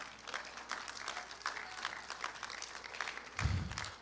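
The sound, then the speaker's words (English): A church audience applauds itself steadily, many hands clapping in a dense, crackling wash throughout, with a brief low thump near the end. “Give yourself an applause.”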